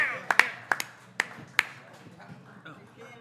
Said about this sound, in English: Well, y'all get his man a round of applause.